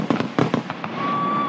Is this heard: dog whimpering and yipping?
no